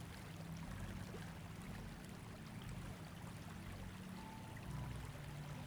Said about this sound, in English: And as the waterfall flows, you feel it traveling through your crown chakra, through your third eye chakra, through your throat chakra, down to your heart chakra, to the solar plexus chakra,